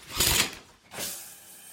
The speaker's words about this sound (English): Morning arrives. Shower,